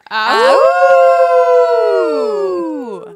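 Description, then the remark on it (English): A loud, sustained howl from human voices imitating wolves, rising at the start, holding a long wavering note, then sliding down and fading over about three seconds. “We howled.”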